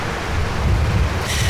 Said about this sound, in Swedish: Du, nu kanske jag verkar en tunnis, men jag tycker det blåser väldigt. Ska vi inte hoppa in i bilen igen?